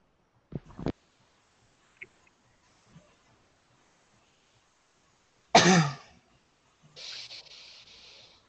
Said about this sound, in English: Bless you.